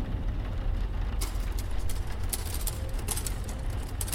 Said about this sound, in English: Is that a typewriter you hear? How strange. Must be some leftover relic.